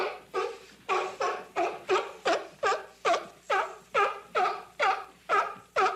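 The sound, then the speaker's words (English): A seal, a fin-footed, semi-aquatic marine pinniped, barks over and over in a steady, rapid series of about a dozen hoarse, dog-like calls, loud, with no other sounds around it. “Well, they're fin-footed, semi-aquatic, mostly marine animals. There are 33 species. And here's what one of them sounds like.”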